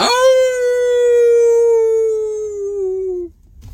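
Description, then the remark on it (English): A person howls like a wolf in one long, loud note that holds steady, sinks slightly in pitch, then cuts off abruptly into quiet. “You wanna howl with me?”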